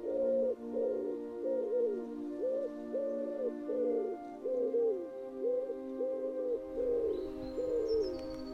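A wood pigeon coos repeatedly in a steady, rhythmic series of soft, hooting phrases, clear, with faint higher birdsong entering near the end.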